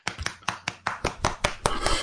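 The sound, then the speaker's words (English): A short burst of applause: about a dozen sharp, even hand claps in a quick, steady rhythm, moderately loud, with no talking over them. “And for you, we have only hearty praise and a warm round of applause.”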